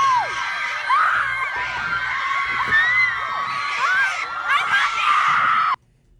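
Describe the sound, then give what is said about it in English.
A played video clip of a crowd of excited fans, with high-pitched girls' screams and shrieks rising over dense cheering for about six seconds, a girl screaming 'I love you' at the end, then cutting off abruptly. “The girl's screaming, I love you at the end.”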